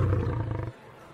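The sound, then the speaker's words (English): A short, loud, deep roar like a lion's, rumbling for under a second and then cutting off into quiet. No one speaks. “A shipwrecked princess would be forced to choose between wedding an evil pasha or being sacrificed to a lion.”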